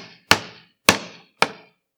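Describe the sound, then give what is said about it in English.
Three sharp hammer blows land about half a second apart while someone fixes a door, each a loud, ringing strike with a short decaying tail, separated by silence and with no voices. “While the rest of the family prepared for an evening of festivities, Theo tried to fix the door.”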